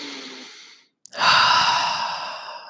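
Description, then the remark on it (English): A single deep breath: a soft airy inhale, a short pause, then a longer, louder exhale that slowly fades out like a sigh. No talking. “Next thing that I want to talk about, or the fourth thing, is optimizing your breathing. So breathing.”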